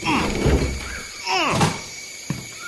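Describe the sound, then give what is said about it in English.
A door bolted on the far side is tried and shaken, with creaking, rattling bursts near the start and middle, then a sharp knock as it holds fast, stuck. It sounds fairly loud. “This door is bolted on this side.”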